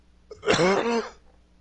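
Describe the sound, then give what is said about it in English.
A single muffled cough into a hand, moderately loud, with a rough, throaty rasp lasting under a second before quiet returns. “I coughed into my hand.”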